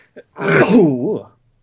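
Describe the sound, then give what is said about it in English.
A single sneeze: a quick catch of breath, then a loud breathy burst that trails off into a short, wavering voiced sound. No one speaks. “Yeah, nobody say bless you, thanks.”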